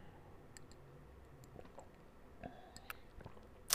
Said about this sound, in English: Hold y'all, let me take a sip of this drink real quick.